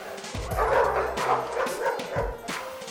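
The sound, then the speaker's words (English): Several bored, anxious dogs in the kennels of an animal shelter bark and yip over one another in a loud, continuous chorus of overlapping, irregular barks, with a few higher-pitched yelps mixed in and no voices. “Because the dogs are bored and often grow anxious, they have been tearing apart their surroundings.”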